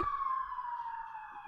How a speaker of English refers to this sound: Shout out to the sirens.